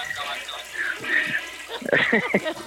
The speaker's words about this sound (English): You got a double flush sometimes. You know it's bad.